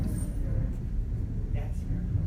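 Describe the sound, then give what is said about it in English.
An airplane passes overhead, a deep, steady roar that holds at an even loudness throughout, dominated by low rumbling tones with a faint airy hiss above. “Is that thunder? No. Airplane.”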